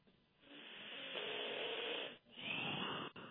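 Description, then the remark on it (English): Heavy, hissing breaths from a caller over a muffled telephone line into a radio call-in show, one long rushing breath, a brief pause, then another, steady and fairly loud, with no talking. “Somebody's just breathing heavily into the phone.”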